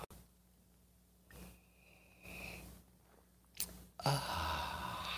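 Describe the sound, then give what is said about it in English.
A few short airy slurps of hot coffee being sipped for a Thanksgiving sip, one with a thin whistling edge, followed by a sharp click and a loud, breathy exhale of satisfaction. “It's called the simultaneous Thanksgiving sip today, and it happens now.”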